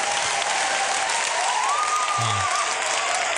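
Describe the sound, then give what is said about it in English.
A crowd cheering sound effect: a crowd cheers and applauds in a steady, dense roar that stays loud throughout, with a faint whistle rising above the noise partway through. “And this is a crowd cheering for our great advice.”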